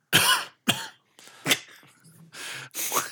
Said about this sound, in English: Do bugs cough? They do now. No, she does cough, but it comes out of her abdomen.